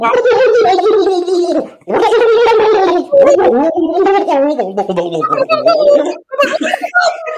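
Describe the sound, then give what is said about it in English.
A person imitates a turkey's gobble with a rapid, warbling, throaty burble, delivered in several loud bursts with brief pauses between them. “My turkey, I think, is a bit chickenish.”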